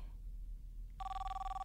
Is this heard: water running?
no